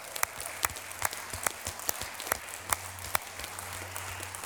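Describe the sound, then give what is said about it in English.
An audience claps during a church sermon in a steady rhythm, about two sharp claps per second, over a constant low hum; the clapping is fairly soft, with no voices. “Let's clap if you've been set free.”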